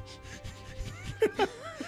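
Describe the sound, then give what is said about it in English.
A person sniffs loose-leaf tea with ginger root and cinnamon repeatedly in quick, rhythmic, breathy bursts, followed by a few short, higher-pitched vocal sounds like a soft chuckle or whimper. “That's me sniffing.”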